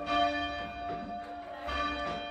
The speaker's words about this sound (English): Ringing the Bell